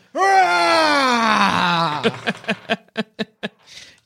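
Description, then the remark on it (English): Sir Richard Ware, a man, bellows a loud, drawn-out scream that slides downward in pitch for about two seconds, then breaks into a quick series of short, rhythmic gasping bursts. “You're not sure what's happening inside until you hear Sir Richard Ware bellowing a scream.”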